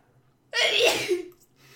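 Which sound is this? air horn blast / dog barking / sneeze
sneeze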